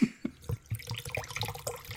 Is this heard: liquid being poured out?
yes